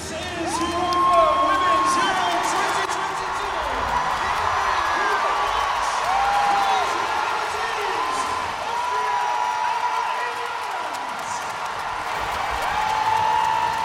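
A huge stadium crowd roars continuously just after a light, fire and fireworks show, a dense wash of cheering and shouting with scattered whistles and whoops rising above it, sustained at a steady high level throughout.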